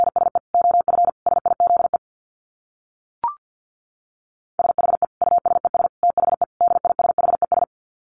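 Rapid Morse code at about 50 words per minute: a steady mid-pitched tone keyed in quick dits and dahs, sent in two runs split by a pause with a single short click.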